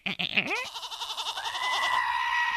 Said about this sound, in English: Okay, there's the goat. That is a goat. There's not just like a random Halloween scream.